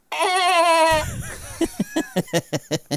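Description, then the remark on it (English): A person imitates goats heard while camping, letting out one long, loud, quavering bleat, followed by a quick rhythmic run of short, choppy vocal bursts. “And we're like, who the fuck goes camping with their goats?”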